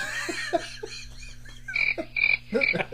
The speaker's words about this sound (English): I'm still laughing. The crickets were funny.